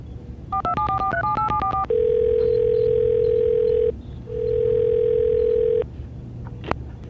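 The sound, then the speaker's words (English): A quick run of telephone keypad beeps as a number is dialed to call a special effects department, followed by two long, steady tones on the line, heard clearly with no voices over a faint background hum. “get me the SC department on the phone.”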